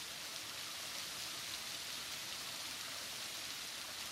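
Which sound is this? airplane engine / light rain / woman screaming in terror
light rain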